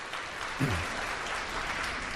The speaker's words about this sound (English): So I want to clap for my wife, and I thank God for her.